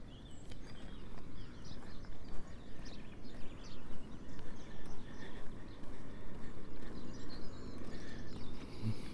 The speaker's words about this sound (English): And I've got a song thrush singing just to my left.